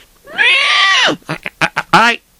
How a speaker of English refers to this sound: Hey, what's the horse doing? Stop jumping up and down. The horse is jumping up and down. The two horses are going a bit of Michigan. They're going a little crazy. Hello, horsey, what's the matter with you?